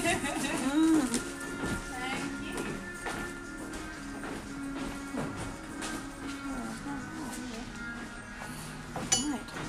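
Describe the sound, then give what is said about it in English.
Low, throaty cooing of pigeons, rolling on steadily beneath sharp clinks and taps of dishes, with indistinct voices murmuring in the background. “Donate it to the birds.”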